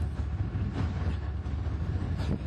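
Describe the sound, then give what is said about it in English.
A freight train with two engines rumbles past on double tracks in town, a steady heavy low-frequency roar with faint rattling of cars, continuous with no talking. “Now there's a freight train going the other direction.”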